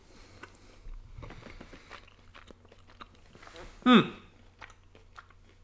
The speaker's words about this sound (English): If you hear me chewing, I apologize. I'm trying to stay away from the microphone.